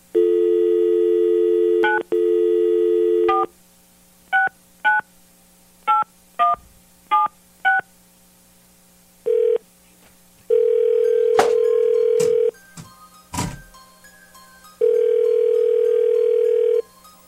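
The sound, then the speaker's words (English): A steady telephone dial tone, then a quick series of short touch-tone beeps as a number is dialed for a call placed on air, followed by long ringing tones on the line, with no voices. “but you definitely want this call to be on the air, right?”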